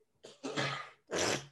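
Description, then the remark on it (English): A harsh nasal throat clearing from a person with a stuffed-up nose: a short snort followed by two loud, raspy bursts with a brief pause between them. No one speaks. “You want to go blow your nose or something?”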